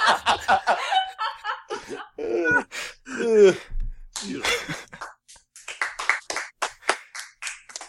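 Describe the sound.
Applause as a few people clap in quick, uneven bursts, mixed with chuckles, groans and animated voices that rise and fall around it.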